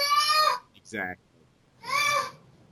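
A young child shouts at a cat in high, strained bursts: two loud, drawn-out yells with a shorter rising yelp between them, fairly prominent.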